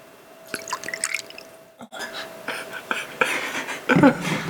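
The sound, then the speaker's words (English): Crown Royal Blender's Mash, a blended Canadian whiskey, being poured into a glass, with a steady gurgling splash that swells toward the end over a few seconds, plus small drips and faint background murmur. “So who wants to pour it? Blended Canadian whiskey.”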